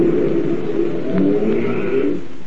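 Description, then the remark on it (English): A car engine starts and rumbles steadily and fairly loud throughout, with a slight rise in pitch partway through as the car drives away. No voices are heard. “How could you tune on Mr. Roach's car without lifting the hood?”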